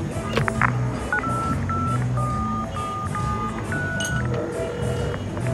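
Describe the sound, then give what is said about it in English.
Telephone touch-tone dialing: a quick run of short, evenly spaced electronic beeps, about eight keypresses, over a steady backdrop of muffled room noise. “Hey, you got a phone in here?”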